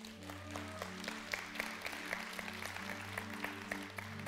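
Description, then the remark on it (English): An audience breaks into steady, dense applause during a sermon, many hands clapping at once without letting up, while a low sustained musical tone hums underneath. No one speaks. “Did y'all put an applause sign up?”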